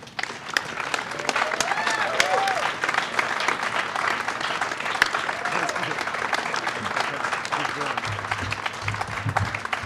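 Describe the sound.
Sustained audience applause, a dense crackle of many hands clapping at steady loudness for about ten seconds, with faint cheers and a few voices rising through it.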